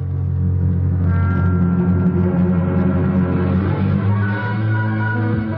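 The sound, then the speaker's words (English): A car drives along with a steady engine hum and low rumble, its pitch rising slightly as it picks up speed, with no voices. “Later, I pull up at Pfeffer's Brewery and Warehouse.”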